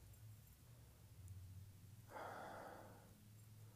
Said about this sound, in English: so here I'm really just putting my nose in a glass. I'm opening my mouth and I'm breathing. You can probably hear me.